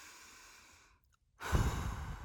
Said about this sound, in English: In through the nose. And out through the mouth. Yes, that's much better.